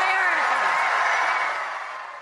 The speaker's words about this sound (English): Big cheer from the crowd in Charleston. Pretty good crowd, I would say. Interesting venue. Overflow audience. Diverse, a lot of young people there. Really good energy. This was not going through the motions.